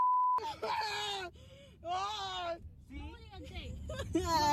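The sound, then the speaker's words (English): A short beep, then people screaming and crying out in panic as they flee a wildfire, a resident trying to escape the flames in her car; a series of strained, wavering wails over a steady low rumble of background noise. “It is just terrifying to listen to those people scream and try to flee in just a few seconds' notice, it looks like.”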